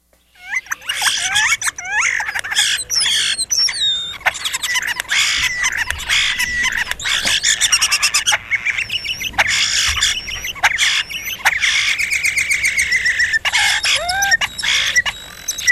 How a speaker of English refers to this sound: And they can make like a wolf whistle sound. They can make these ghostly kinds of sounds. In fact, let me play that, and then we'll go to the next person. So starling would be European. Here it is. European starling.